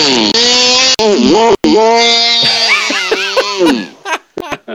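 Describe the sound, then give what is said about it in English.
A person mimics a chainsaw with their voice: a loud, buzzy, sustained drone that revs up and down in pitch several times, then sputters out in a few short bursts. “I can do a chainsaw.”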